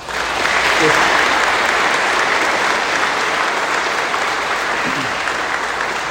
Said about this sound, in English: Clap for them, huh?